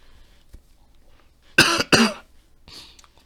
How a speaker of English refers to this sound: This, I wasn't coughing like this earlier, so sorry. Maybe once I started talking, maybe it's I started coughing or something.